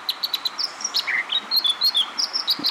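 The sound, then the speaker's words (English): An American dipper, an aquatic songbird of North America, sings a rapid, bubbling series of high, clear whistles and trills, varied and continuous, over a steady rushing background like flowing water. No one speaks. “What the American dipper might lack in bright color, it more than surpasses with amazing aquatic abilities.”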